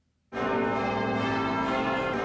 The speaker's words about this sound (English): Then the bells started to ring.